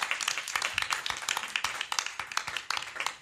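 Audience applause: many hands clapping at once in a dense, steady patter of sharp, bright claps with no voices, sustained at an even moderate loudness throughout.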